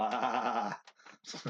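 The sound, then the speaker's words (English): A person imitates a sheep with one drawn-out, wavering "baa" bleat, loud, followed by a few brief breathy vocal sounds. “And then go, bah.”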